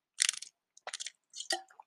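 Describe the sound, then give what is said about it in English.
Someone takes a drink of water: three short bursts of crackly, crinkling handling noise, like a plastic bottle being squeezed and sipped from, with brief pauses between them and no talking. “I'm gonna get a quick drink of water.”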